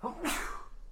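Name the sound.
sneeze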